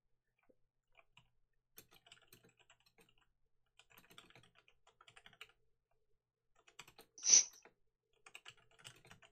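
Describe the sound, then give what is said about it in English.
Someone types on a computer keyboard in irregular bursts of quiet key clicks with short pauses between them, and one louder clack near the end. No one speaks. “Oh, by the way, while he's typing this up, I'll just say what I've been playing this week,”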